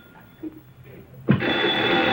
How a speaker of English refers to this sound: Now the phone's ringing. Old Hello? Rotary phone.